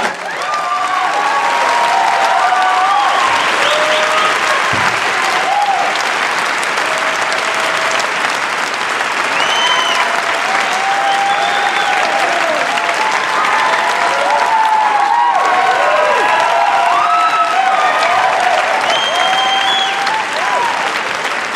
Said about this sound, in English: Quite a punctuation mark. It's a weird place for people to cheer.